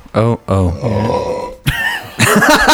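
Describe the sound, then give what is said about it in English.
A long, loud burp rolls out in several rough, croaking pulses with a deep, gravelly tone, stretching across nearly three seconds with brief breaks between bursts. “It sounds like a walrus there.”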